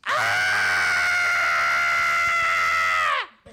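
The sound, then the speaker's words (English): A woman lets out one long, loud, high-pitched acted scream that holds steady for about three seconds before cutting off abruptly. “I had to scream so many times in the audition.”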